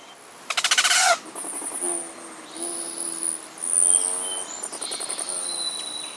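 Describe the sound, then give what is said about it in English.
Rufous and ruby-throated hummingbirds migrating north: thin, high squeaky whistles and chittering calls mixed with short buzzy, pulsing bursts like rapid wingbeats, continuing steadily with no one speaking. “Here they come. Rufous hummingbirds, ruby throats, and others are migrating north after a hot, dry winter in sunny Mexico or Central America.”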